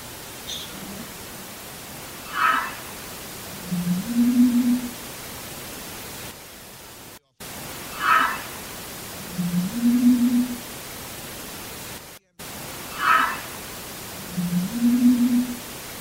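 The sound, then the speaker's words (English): Faint, low humming tones rise out of a steady wash of static hiss, preceded by a brief higher-pitched murmur; the same short sequence repeats three times. An EVP recording from an investigation at the County Infirmary, built in 1899, in Winchester, Indiana. “This is the humming sound that we're going to play first.”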